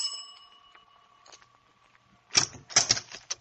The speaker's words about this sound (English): So later that same afternoon, I walked up the stairs to the front door of 1217 Granger Avenue. I rang the bell and waited.